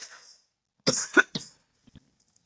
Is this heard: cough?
yes